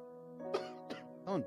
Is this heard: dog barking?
no